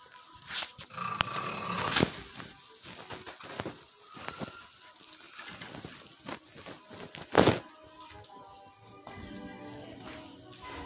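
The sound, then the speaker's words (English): A man, the speaker's husband, snores in his sleep, rough, rattling breaths rising and falling in uneven bursts, with one louder snort midway and quieter wheezy rasps between. “Hold on, I'm about to walk in on my husband snoring.”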